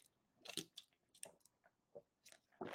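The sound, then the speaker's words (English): Someone sips a drink: a series of short, wet slurping and swallowing bursts spread unevenly over a few seconds, with no talking. “Taking a sip of my drink, talking about dehydration.”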